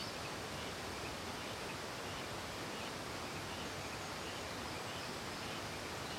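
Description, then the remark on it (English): The South Fork Yuba River in Nevada County rushes steadily through its canyon, its flowing water making a continuous, even hiss with no breaks or distinct splashes, fairly soft, heard from a home about 4 miles away as the crow flies. “"Hey, I think that's the river," we hear.”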